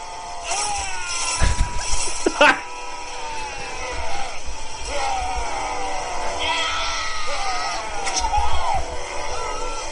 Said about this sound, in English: Could you play us out on the longest yell and the greatest yell in movie yelling history?